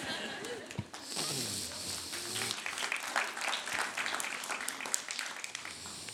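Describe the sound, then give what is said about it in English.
An audience claps together after a Bible reading, a dense, steady patter of applause that holds for several seconds, with a few voices murmuring underneath at the start. “Yeah, you could clap if you would like to.”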